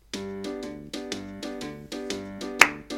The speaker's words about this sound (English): Yeah, more clapping from Jason Garrett.